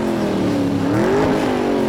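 monster truck engine revving

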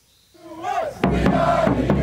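football fans cheering

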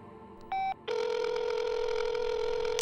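telephone ringing

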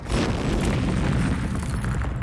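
explosion sound effect

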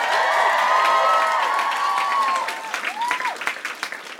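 audience applause and cheering

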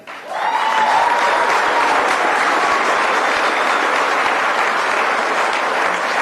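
crowd applause

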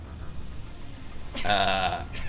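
sneeze

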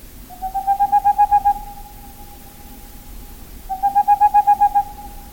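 boreal owl call

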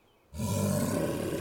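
bear roar

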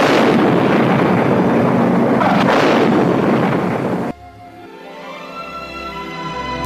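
bomb explosion

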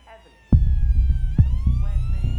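police car siren

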